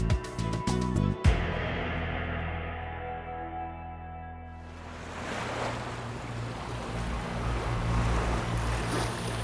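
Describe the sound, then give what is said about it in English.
Ocean waves wash onto a beach in Huelva, Spain, at sunrise, with a steady rushing hiss that builds after a few seconds, over a low rumbling drone, with a brief choppy thumping at the very start. “Now let's go back to a beach in Huelva, Spain, just as the sun was beginning to rise on April 30th, 1943.”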